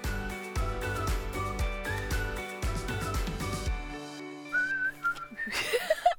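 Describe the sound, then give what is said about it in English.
Instrumental music plays, then gives way to a few short, thin whistled notes from someone with a dry mouth, breathy and wavering, ending in a rising airy squeak as the whistle struggles to hold. “I have like dry mouth. I can't even whistle right now.”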